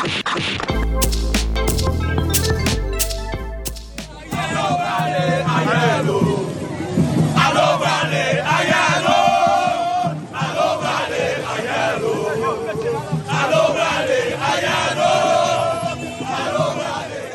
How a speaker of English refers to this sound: Those were the sounds of huge crowds gathered in Haiti in front of the home of former President Jean-Bertrand Aristide, victim of a U.S.-instigated coup in 2004.